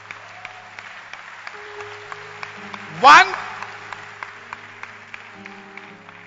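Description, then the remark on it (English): An audience claps steadily throughout, a dense patter of many hands at an even level. Midway a man briefly speaks over the applause, louder than the clapping. “I'm encouraged by your hand clap.”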